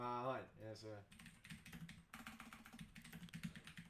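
A short burst of speech gives way to rapid clicking of computer keyboard keys, typed in an irregular, steady stream for several seconds.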